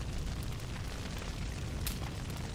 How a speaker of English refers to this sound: he is literally burning Star Wars figurines.